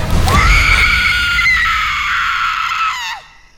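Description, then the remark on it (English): A long, shrill, ear-piercing horror-movie scream held at high pitch for about three seconds, loud, then cutting off abruptly with a slight falling tail. “unleashes the most ear-piercing Scream Queen scream.”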